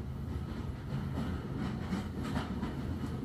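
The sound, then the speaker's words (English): A train rumbles steadily along railway tracks toward a brick railway bridge, a continuous low roar with faint rhythmic clatter, constant throughout, with no voices. “Nearer and nearer it gets as the train edges along the tracks”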